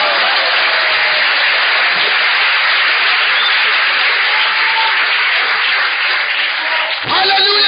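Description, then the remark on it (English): An audience claps steadily and loudly for several seconds in praise of the blood of Jesus, a dense wash of hand claps filling the space, with a voice breaking in near the end. “Clap your hands for the blood of Jesus.”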